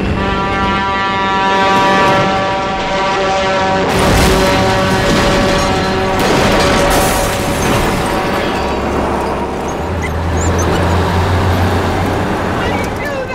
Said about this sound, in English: So the truck just like smashes the entire place up.